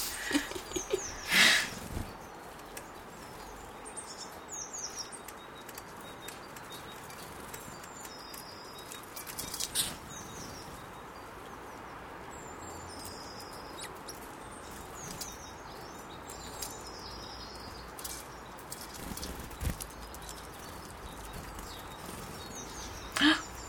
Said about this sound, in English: Fight. That was a fight between a great tit and a robin.